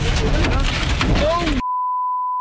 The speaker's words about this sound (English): They're in a tornado nightmare. You can hear their car battered by the ferocious twister.